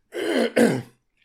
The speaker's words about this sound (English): Let me clear my throat right quick.